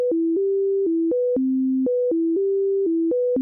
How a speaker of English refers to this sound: Deutsch recreated a simple set of tones alternating between low and high and sent it to the left ear